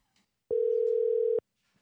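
A single steady ringback tone from an outgoing phone call, one electronic burst just under a second long, clear and fairly loud, with near silence before and after and no voices.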